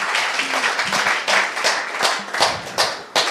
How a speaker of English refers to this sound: come in and give him a round of applause.